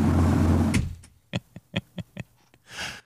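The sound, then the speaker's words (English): A loud, low diesel engine rumble comes through an opened door at the start, then cuts off abruptly as the door shuts to a soundproofed room. A handful of sharp clicks and a brief whooshing rush follow in the quiet. “Because let me tell you, when you open that door over there, it's not a quiet week because that diesel engine is obnoxious.”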